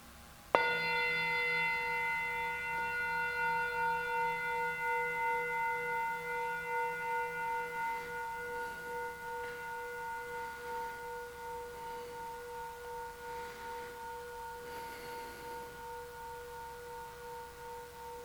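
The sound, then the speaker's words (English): A single meditation chime is struck once, its bright, shimmering tone with several steady overtones ringing out and slowly pulsing as it fades over many seconds, with no talking. “So let's begin our silence with this beautiful chime that I'm about to sound.”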